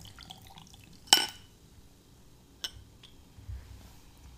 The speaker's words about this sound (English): But just pouring ourselves a little bit of this stuff over ice. Because it seems like it should be served cold.